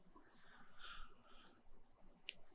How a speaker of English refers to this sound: And you're yawning. Why are you tired?